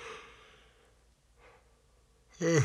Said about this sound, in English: Are you yawning? I'm about to yawn.